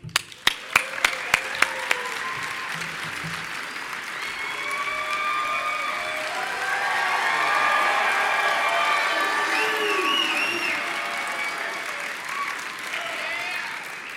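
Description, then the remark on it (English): A large audience at Stan's panel bursts into sustained applause with cheering and whoops, welcoming Jamie Paglia, co-creator and executive producer of Sci-Fi's Eureka; a dense wash of clapping that swells and holds steady after a few sharp claps at the start. “I totally just hijacked Stan's panel to get applause for me.”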